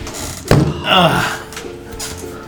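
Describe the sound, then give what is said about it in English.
A single sharp thunk of someone bumping into an open door lands abruptly near the start, followed by a short vocal reaction. “How did I miss that open door?”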